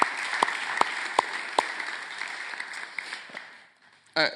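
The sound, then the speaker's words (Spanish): A crowd applauds all the mothers with a dense wash of clapping, a few sharp individual claps standing out in a steady rhythm, then fading out; a brief voice or tone sounds at the very end. “Así que nuevamente vamos a darle un aplauso a todas las mamás.”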